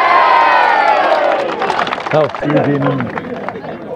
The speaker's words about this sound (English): Three cheers for the Mills. Yep. Hooray. Hey!